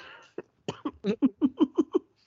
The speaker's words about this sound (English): And I've held in as many coughs as I could.